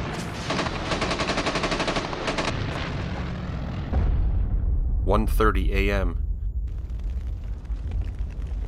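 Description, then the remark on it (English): Rapid bursts of machine-gun fire and tracer bullets rattle over a dense roar, giving way to a deep rumbling barrage of anti-aircraft flak over Normandy, heard by paratroopers under their parachutes, with a wavering whistle-like tone and scattered crackling pops trailing off. “When your chute popped open, then you could hear the flak.”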